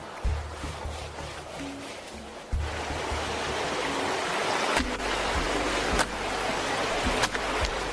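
Wet sloshing and swishing as laundry is rubbed and scrubbed by hand with soap in water, a steady watery churn with a few sharper splashes and squelches and no talking.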